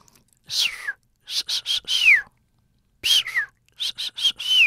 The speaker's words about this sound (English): But what they do know is that each dolphin seems to have its own kind of signature whistle. Which is basically a name. Every individual has its own name.